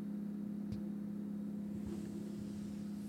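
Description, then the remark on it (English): A steady, low engine hum drones continuously from the tree trimmers' van truck idling outside right across the way, with a couple of faint knocks breaking through partway. “The tree trimmers are outside. Right across. Do you see the van truck?”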